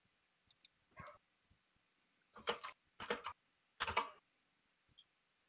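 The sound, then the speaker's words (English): Quick bursts of computer keyboard typing, clattering keystrokes in three dense clusters with a few isolated taps before and after, clear with no talking. “I am typing, but I'm not looking at that.”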